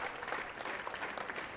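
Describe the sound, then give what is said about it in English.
Dense, steady applause from a large crowd fills the room as people stand up all around, a continuous patter of many hands clapping at once with no pauses. “People are popping up all around, and the whole room is ringing with applause.”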